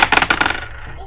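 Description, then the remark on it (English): Several dice clatter and tumble across a hard tabletop in a quick burst of sharp clicks that slow and fade within about a second, with no one talking. “I should really use my dice. Alright, here we go.”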